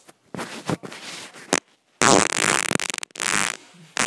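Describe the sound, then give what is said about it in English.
Soft shuffling and rustling for a couple of seconds, then a loud, long, sputtering fart with a brief gap before a final burst, with no talking. “So it sounds like that person, because you can hear there's like a shuffling at the beginning of that fart.”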